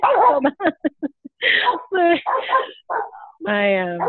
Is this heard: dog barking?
yes